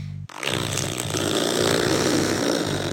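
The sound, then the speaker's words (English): A listener's voice imitates a red fox fart with a loud, sustained buzzy raspberry that rattles steadily for several seconds after a short low hum, with no talking. “This is what our listeners think these farts sound like. This is a red fox fart.”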